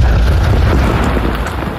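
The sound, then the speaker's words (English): A heavy explosive blast from a sack of explosive placed by demolition expert Dutch Vermeer, blowing the doors off a German fortified bunker at Pointe du Hoc, rumbles loudly for nearly two seconds, a deep, roaring boom with crackling debris noise that stays strong throughout before easing slightly at the end. “Carefully placed sack of explosive blows the doors right off.”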